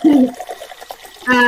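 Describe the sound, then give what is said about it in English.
Juice pours for a second and a half, a gurgling tonal swell at the start giving way to a soft splashing trickle, then another full gurgle at the end. “Let's pour some juice for them.”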